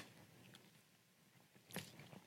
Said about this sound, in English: I'm going to drink some water here.